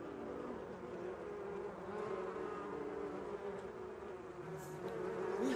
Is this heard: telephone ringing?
no